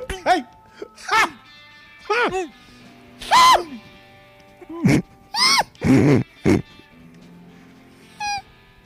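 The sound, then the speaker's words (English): A woman imitates monkey noises: a rapid series of sharp, high-pitched hoots and squeals in uneven bursts, some rising and falling in pitch, with short pauses between calls. “See her do monkey noises,”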